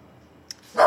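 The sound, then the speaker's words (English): A pet dog lets out a single loud, sharp bark right at the end after a small click and near-quiet background. No one speaks. “Sorry, my dog had to comment.”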